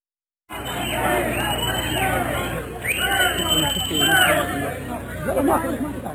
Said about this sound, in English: Here's a little bit of the sound of the chaos after all the announcements were made this morning, I think before the horses got back.